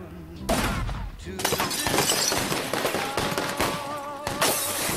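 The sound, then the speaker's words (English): The character Dorfman's car explodes in a scene from a Martin Scorsese film: a sudden loud blast, then a second burst, followed by several seconds of shattering glass, crashing debris and crackling noise, with faint voices underneath. “Dorfman gets car blown off here.”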